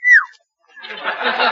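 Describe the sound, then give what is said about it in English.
A single short, clear whistle at a good-looking Coast Guardsman slides downward in pitch, then after a brief pause a burst of crowd laughter and chatter rises and continues to the end. “Well, if it's a good-looking Coast Guardsman like … and you're a girl, you don't call him. You just whistle like this.”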